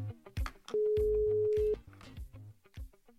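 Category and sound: signal or alarm, telephone ringing tone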